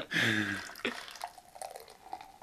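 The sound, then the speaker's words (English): Beer pours into a glass with a brief, resonant gurgling rush, forming a large foamy head, then trails off into scattered soft drips and fizzing trickles, with no talking. “Oh, yeah, can we get the pour sound in?”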